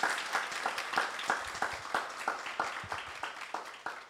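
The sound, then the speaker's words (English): An audience at an author reading at the Midtown Scholar Bookstore applauds steadily for several seconds, a dense patter of many hands clapping with a few sharper claps standing out, moderately loud with no talking. “Can we give a round of applause”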